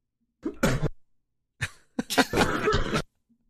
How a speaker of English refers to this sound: Why is everyone coughing? I think they're laughing.